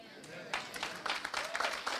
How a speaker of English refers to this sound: What? 10 people clapping their hands? I don't see that.